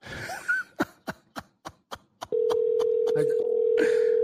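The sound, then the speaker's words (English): A quick run of sharp clicks, like keys being pressed, gives way to a loud, steady telephone line tone that hums on unbroken for about two seconds. “I'm like, why doesn't the phone work anymore? It's so low.”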